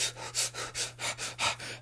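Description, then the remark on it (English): A person demonstrates the shallow, rapid chest breathing of beginner runners: about eight quick, airy in-and-out breaths in a steady, hurried rhythm, fairly soft, over a faint low hum. “You're not breathing deep enough. And you're only breathing in the chest area.”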